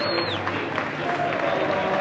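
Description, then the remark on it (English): Steady, dense stadium applause from football fans blends with a broad roar of crowd noise as Frank Lampard comes over applauding the fans. It holds at a fairly loud, even level throughout with no clear speech on top. “Frank Lampard is coming over now, applauding the fans.”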